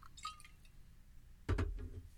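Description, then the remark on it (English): A little whiskey is poured into a glass, a light clink and trickle early on, then a louder splashing gurgle of liquid filling the glass for the final second. “I'm actually pouring it right now.”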